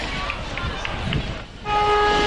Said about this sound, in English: Siren sounds and we'll get underway here in the preliminary final.